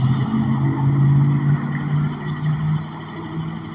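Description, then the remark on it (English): A truck passes by: a steady, fairly loud rumble of heavy tires rolling on pavement with a low engine drone underneath, holding roughly constant throughout with no voices. “Sounds of the wheels and the pavement.”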